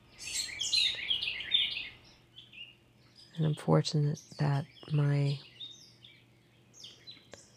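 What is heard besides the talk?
bird song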